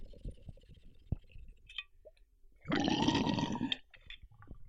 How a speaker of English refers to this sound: I'm using my brand new water pipe. You love it. Mixed Up Creations in Denver. Last weekend, a couple weekends, I don't know. We went down there and got it, and it's big.